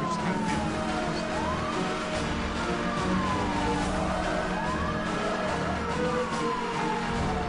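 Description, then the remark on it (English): Police sirens wail in overlapping rising and falling sweeps over a steady roar of engines and road noise, loud and continuous, from a high-speed chase in the racing video game Need for Speed Hot Pursuit. “We're playing Need for Speed Hot Pursuit, which is Burnout with Sirens and Jammed.”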